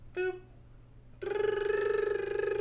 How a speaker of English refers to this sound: Oh, God damn, my phone's ringing. I'm just going to let it go. I'm just going to let it go. I'm going to go to voicemail. Decline.